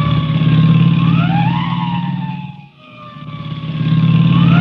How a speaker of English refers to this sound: I'll give the siren all the way. You ought to be able to hear that.